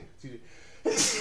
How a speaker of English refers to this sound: Sneezes.